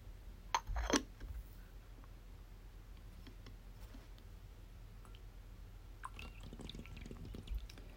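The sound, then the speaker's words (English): Tea is poured into a bowl, a soft continuous trickle of liquid with a few small clinks at the start, steady and fairly quiet with no talking. “I'm gonna pour another bowl of tea.”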